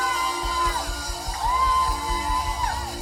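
A church audience shouts and whoops loudly and continuously in praise of the Lord, with sustained high cries rising over a dense roar of voices and scattered claps.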